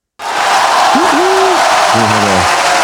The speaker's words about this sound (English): Crowd noise thing. There's a button that's going to get added in.